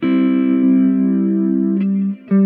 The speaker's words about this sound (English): Reverb, delay, you know, let's try some of these other effects like flanger.